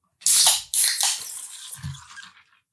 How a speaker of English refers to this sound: And I need you to crack your beer. At the same time I do mine, just take a quick shot and set it back down.